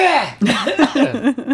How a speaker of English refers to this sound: I have to clear my throat a lot. I hope you don't mind. So I'm going to have to stop and clear my throat from time to time. No problem. Like right now.